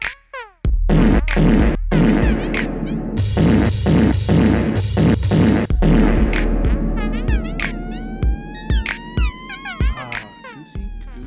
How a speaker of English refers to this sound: Fart noise.